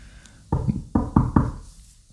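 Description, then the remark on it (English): Four firm knocks on a wooden door, a slower first pair then two quicker raps, distinct with no voices. “All of a sudden, they heard a knocking on the door.”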